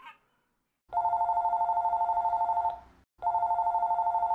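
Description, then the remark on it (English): A telephone rings loudly, a long continuous ring of about two seconds, a brief pause, then a second ring begins, with a fast trilling pulse. “Over winter break was when Ricky started calling me on the phone to talk, like, every night.”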